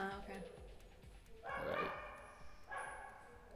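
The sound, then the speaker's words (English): Neighbours' dogs bark and yip in a courtyard in a couple of bursts, with a slightly echoey outdoor feel, while a person talks underneath. “I kind of want to wait until these dogs leave the courtyard.”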